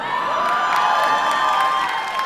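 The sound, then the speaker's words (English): A crowd cheers and applauds steadily, with whoops and shouts rising above a dense wash of clapping that stays loud and unbroken throughout. “But she, it's applause there for making life hell for men.”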